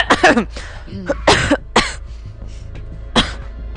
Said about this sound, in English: Just pretend like you coughed.